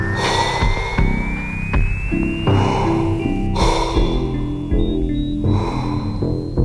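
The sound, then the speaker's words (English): A man gives three drawn-out, exaggerated fake yawns, breathy and theatrical, spaced a second or two apart, with steady background music and a rising tone playing underneath. “After exactly 5 seconds, the spirits cause him to release 3 of the fakest yawns I have ever seen.”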